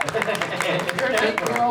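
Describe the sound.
Audience applause: a steady, dense wash of many hands clapping for under two seconds, with voices and cheers mixed into the noise.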